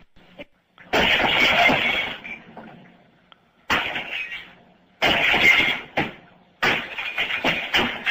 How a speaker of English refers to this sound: Somebody playing a game and I done broke this window out.